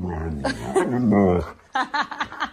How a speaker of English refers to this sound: A husky called Aaron has gone viral on TikTok for speaking in an Italian accent. His owner's Italian, so it's not really a surprise, apart from the fact that dogs have accents.